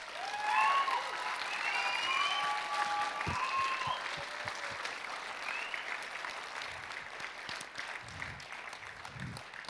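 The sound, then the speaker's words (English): A large audience on its feet applauds performers loudly and steadily, with cheers and whistles rising over the clapping early on before the ovation settles into a sustained roar. “Everybody on your feet, give these guys another massive round of applause.”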